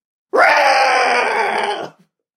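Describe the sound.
A person loudly imitates a cartoon dog's howl: one strained, groaning vocal cry held for nearly two seconds, then cut off abruptly.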